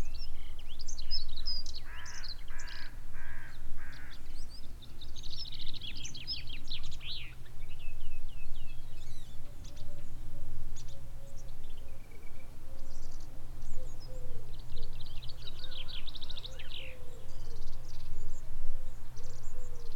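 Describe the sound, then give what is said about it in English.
Birds sing and chirp steadily from several directions across open moorland on Dartmoor on a sunny morning, bright trilling phrases over a low, constant rumble of wind or background noise, with no voices. “The sun beating down on my bald head and the birds singing so peacefully.”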